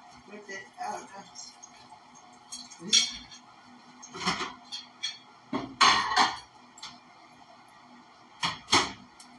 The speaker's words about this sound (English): Let me dry this plate off.